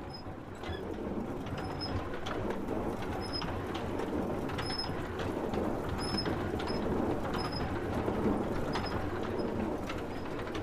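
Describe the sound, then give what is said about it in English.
A water-powered city grain mill on the River Poddle outside Dublin's city walls works steadily, a dense, continuous low rumble and mechanical churning with rushing water, while small birds chirp intermittently in high, brief notes above it. “These are city mills, using water power to grind grain.”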